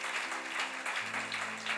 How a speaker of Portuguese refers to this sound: Pode aplaudir Jesus.